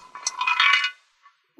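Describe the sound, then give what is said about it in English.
A hard bone rattles and clatters in a metal frying pan, a bright, jangling burst of clinks lasting under a second, followed by a faint single tick and a dull thump at the end. “That bone sure sound hollow in that frying pan.”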